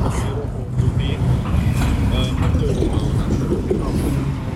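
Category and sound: vehicle, city traffic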